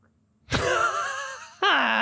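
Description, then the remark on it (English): A voice imitates a frog leaping off a lily pad: a loud, strained, groaning tone that wavers for about a second, then cuts to a second abrupt burst that slides downward in pitch. “A frog jumping off of a lily pad.”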